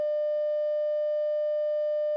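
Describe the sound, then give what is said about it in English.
A single steady censor beep covering the word "fuck" holds one mid-pitched electronic tone for about two seconds, unbroken and even in loudness, with no voices over it. “There's a beep for Sarah other than her.”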